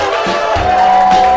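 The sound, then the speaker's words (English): The studio audience of the show Love It or Leave It applauds and cheers at the start of the show, a loud, steady wash, dense and continuous, with a thin sustained whistle-like tone riding over the noise. “I want applause, people.”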